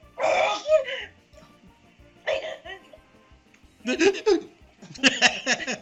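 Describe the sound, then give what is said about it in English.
A run of about four sharp, voiced sneezes, fairly loud, each a short burst separated by brief pauses, with no talking in between. “And bless you.”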